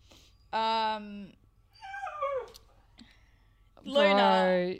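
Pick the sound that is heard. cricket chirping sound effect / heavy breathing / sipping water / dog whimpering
dog whimpering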